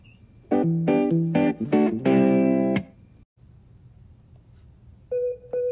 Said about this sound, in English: All right, what does that sound mean, Aaron? It means we have a caller.